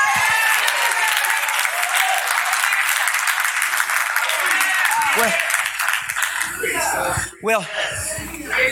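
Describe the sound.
A crowd claps steadily in a dense, continuous wash of applause, with scattered voices and shouts rising over it near the end.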